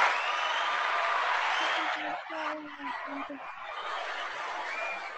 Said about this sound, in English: There's applause from nowhere, absolutely nowhere